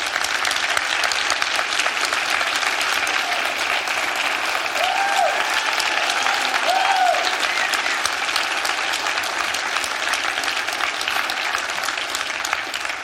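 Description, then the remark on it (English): A large church audience applauds steadily for the full stretch to honor their pastor, his wife and their team, a dense, even wash of clapping with a couple of brief whoops rising above it and no one speaking. “I told the first service that they couldn't clap that long because I didn't have much time, but we got all afternoon.”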